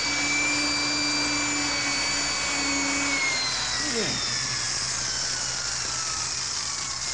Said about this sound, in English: I can get this high-speed drill through to the time lock